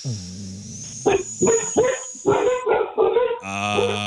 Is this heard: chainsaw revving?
no